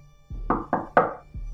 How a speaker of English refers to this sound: The night lay in still silence for a minute. Then came the knocks.